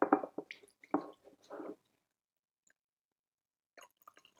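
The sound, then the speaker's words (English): Liquid pours from a red teapot through its filter in a few uneven, gurgling bursts for under two seconds, then stops. After a silence, a handful of faint drips and small plops follow as the last drops are shaken out. No one speaks. “So start by pouring the red one.”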